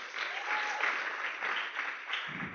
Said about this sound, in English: can we honor and actually just thank with a round of applause the tireless workers, the kids' church people who give up their Sunday so that we can sit. Let's give them a hand.